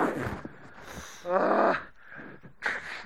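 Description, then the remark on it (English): A run of nasal sniffs with no talking: soft breathy snuffles, then one louder drawn-out sniff in the middle and a quick, sharp sniff at the end. “I'm still sniffing, and still I'm worried sniffing.”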